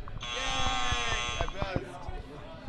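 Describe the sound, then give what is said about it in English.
A loud, harsh game-show wrong-answer buzzer blares for about a second and a half, with people talking over it and continuing after it cuts off. “Oh, do the buzzer.”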